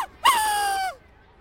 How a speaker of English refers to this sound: Grass stains on your knees, rolling down big hills, making grass quacks.